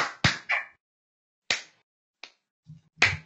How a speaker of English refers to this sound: No, you gotta give him the condescending golf clap.